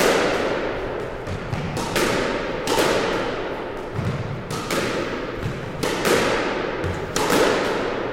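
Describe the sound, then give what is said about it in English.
A squash ball is hit against a wall again and again by one player practising alone, in an irregular rally rhythm, each sharp hit ringing out in a reverberant squash court with a low rumble between strikes. “that's very impressive, Boris, just banging your balls against the wall”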